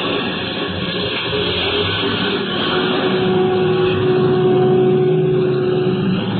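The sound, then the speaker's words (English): A bus engine drones steadily, its low hum rising gradually as the bus pulls away and swings out onto a highway in the mountains, gathering speed. No voices are heard. “Halfway back in the bus sat the 3rd passenger, all huddled up in his overcoat.”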